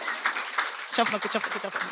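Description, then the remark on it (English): An audience claps steadily, a dense wash of many hands at moderate loudness throughout, and a voice starts talking over the applause about halfway through. “Yeah, so please clap.”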